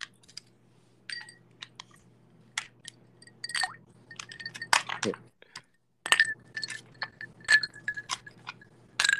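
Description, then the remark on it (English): Ice cubes clink against a glass in a quick, irregular series of sharp, bright taps, with a low steady hum underneath and a short pause midway. “A couple more cubes.”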